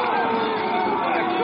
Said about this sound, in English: Boy, the crowd is really intense.